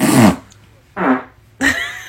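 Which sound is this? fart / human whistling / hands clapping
fart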